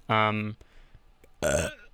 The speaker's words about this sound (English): This is the first one. It's called the burp time, where I burp for about 15 minutes, and then I try not to puke.